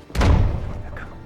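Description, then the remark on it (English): A single heavy door slam: a sudden, loud, booming thud with a deep low end that rumbles and fades over about a second. “Oh, goddamn door, Vicar!”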